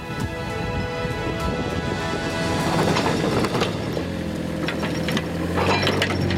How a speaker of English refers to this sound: An excavator clears the road of sand. This sand, which blows in every winter with the northeasterly monsoons, is a regular source of frustration for locals.